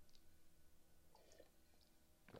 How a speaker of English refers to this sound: Hey, I sipped my coffee there.